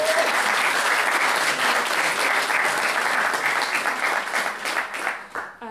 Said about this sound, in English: You're doing a great thing. Round of applause. Woo.